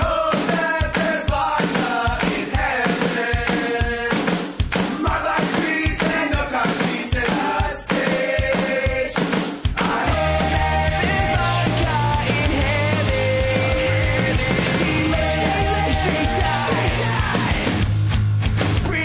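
A loud, driving rock theme for the Britney Watch segment of the Rick Emerson Show on Rock 101 KUFO radio plays on its own with punchy, steady drums and bright guitars; about halfway through, a heavier bass line joins and the sound fills out.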